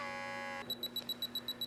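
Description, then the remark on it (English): A 35mm film camera's end-of-roll alert: after a brief buzzing tone, a rapid series of about eight short, high-pitched electronic beeps pulses in an even rhythm, clear and alone. “Now, there's no auto rewind, but when you're done shooting, it does make a noise to tell you that you're done.”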